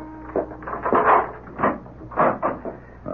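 A door to a person's chambers is opened after the door chime sounds, with a series of wooden creaks, rattles and clunks of the latch and hinges, moderately loud, with no voices.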